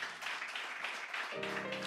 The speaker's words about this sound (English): Let's clap our hands one more time and give him praise. Thank you, Jesus.